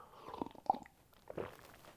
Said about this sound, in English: That's a big gulp of a excellent seltzer water in effect, which is always good.